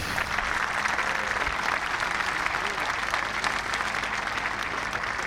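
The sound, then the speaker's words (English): A golf gallery applauds in support of Collin Morikawa as he finishes a round of 64, a dense wash of many hands clapping steadily at an even loudness for several seconds without pause. “You can hear the applause and the support from Morikawa.”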